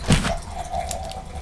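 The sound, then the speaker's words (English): Beer is poured into a glass. A brief sharp splash gives way to a steady, hollow pouring stream that holds an even tone over a low background rumble, with no talking. “Mate, that's such a deliciously sounding pour.”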